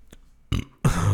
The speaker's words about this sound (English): it says … burps